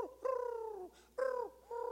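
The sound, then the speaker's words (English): A bird perched on the highest peak of a farmhouse roof coos in a steady series of low, smooth, slightly falling calls, each lasting about half a second with short pauses between, clear and unaccompanied by any voices. “He sits right on the very top and sets up there and coos.”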